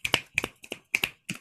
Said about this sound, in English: And at the end, everybody applauds with snaps.